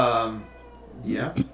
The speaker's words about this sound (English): Cats are meowing. Why are you mad?